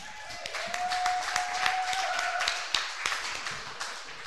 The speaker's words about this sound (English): Please give a big round of applause for our first storyteller tonight